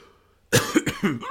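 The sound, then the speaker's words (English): After a brief quiet moment, a loud run of sharp hiccups bursts out, four or five abrupt voiced catches in quick, uneven succession with no talking. “No, oh, not the hiccups.”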